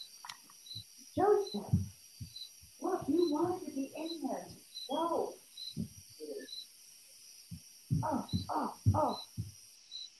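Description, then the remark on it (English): A dog barks in several short bursts, grouped into uneven clusters with brief pauses between them, loud over a faint, steady high-pitched hum. “Sorry, my dog is barking.”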